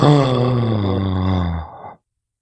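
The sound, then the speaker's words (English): A shocked gasp that becomes a loud, drawn-out voiced cry, sliding downward in pitch for nearly two seconds, alone, then breaking off into silence. “You are right to gasp.”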